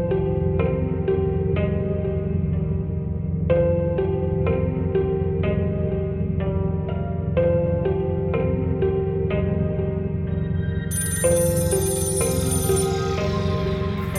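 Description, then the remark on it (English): An old-fashioned rotary telephone attached to a wall by an observation deck rings in a steady, repeating pattern, its bell tones echoing, over a constant low hum, with a bright shimmering wash near the end. “Before I can make sense of it, I heard an old-fashioned phone ringing by the observation deck.”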